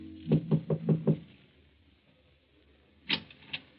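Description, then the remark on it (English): Knocking on the door of number 16, Rue de Roche, in Paris at night: five quick, evenly spaced raps with a hollow thud, a pause of quiet, then two more knocks. Fairly loud, with no voices. “Hans Minkler makes his way through the maze of Paris traffic, knocks at the door of number 16, Rue de Roche.”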